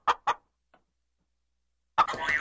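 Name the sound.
chicken clucking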